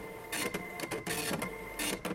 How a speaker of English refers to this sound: Sorry, slow printer.